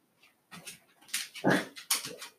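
A dog whimpers and yips in several short, strained bursts, fairly loud, during a squabble with a cat. No one speaks.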